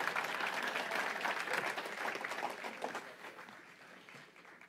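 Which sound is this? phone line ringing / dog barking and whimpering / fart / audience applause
audience applause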